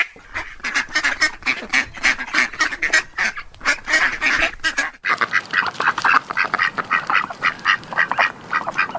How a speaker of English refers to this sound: Yes. Hello, Ducky. Yes, it's ducks today, yes, on the farmyard.